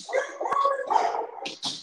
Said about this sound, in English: Hey, I mean, I think what your dogs are saying is Seahawks got that dog in them. That's what they're saying.